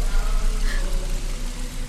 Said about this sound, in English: It isn't an echo, it's water. Mine's flooding. We'll be drowned.